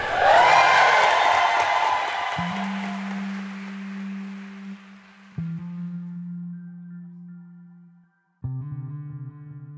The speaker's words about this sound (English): Everyone is standing in ovation, celebrating the first ever Black president of Harvard with applause.